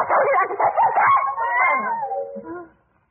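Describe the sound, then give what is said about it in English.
A cat yowls in a long, wavering, whiny cry that bends up and down in pitch, fairly loud, then trails off and fades out after about three seconds. “That cat needs a good twist.”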